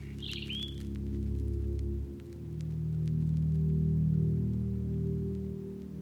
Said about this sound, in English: There's not a lot of birdsong at this time of year. But what you can hear is the robin. They sing almost year round, but with a brief break for molting.